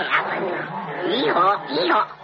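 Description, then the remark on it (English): A voice imitates a donkey braying, with two or three strained, rising-and-falling hee-haw cries delivered fairly loud, each breaking into a rough, nasal wail. “Why have I turned into a donkey? Yeehaw, yeehaw.”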